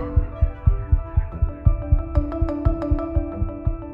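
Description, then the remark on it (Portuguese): A rapid heartbeat pounds in steady, close thumps, about four per second, over a sustained droning hum, with sharper ticking accents joining in the second half. No one speaks. “Foi até difícil cumprimentar a cantora com o coração batendo a 1000 por hora.”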